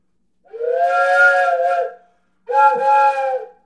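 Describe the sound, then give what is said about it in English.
Two sustained blasts from a four-in-one whistle sound effect instrument with adjustable stoppers, about a second and a half each, with a breathy, chord-like steam-whistle tone and a short gap between them. “It's 4-in-1 because you could pull all the stoppers way down and get a really low pitch.”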